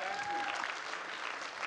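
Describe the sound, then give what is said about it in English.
A crowd applauds steadily for a boy being given a book, a dense wash of many hands clapping at an even, fairly loud level, with a brief whistle-like tone at the start. “Clap your hands for this guy right here.”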